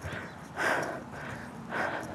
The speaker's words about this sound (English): Are you prepared to watch me heavy breathe in a mic for a couple minutes? Because that's what this is gonna be.